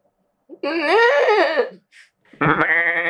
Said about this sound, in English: Because the mount is different, no? Yeah, it's just like a cartoon goat head. Yeah. And this one, they made it like a screaming goat.